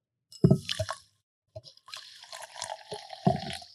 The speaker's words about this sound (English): I've got some fizzy water here, actually. I'm going to put it in here. Here we go.